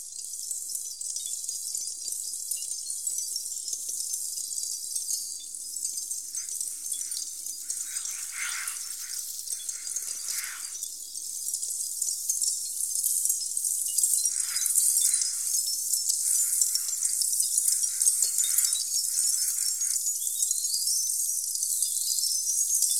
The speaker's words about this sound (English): Tinkling all over the Brussels Pavilion, like needles darting from everywhere, as Xenakis says. You can hear excerpts of that piece right now.